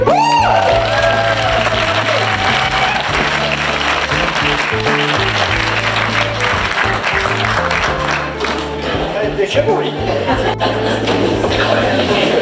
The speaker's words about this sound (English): Ashburton. Can we please get a big round of applause for Calvin Out and Hannah Speer, the host of Counterspin Media.